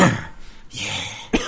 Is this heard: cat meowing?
no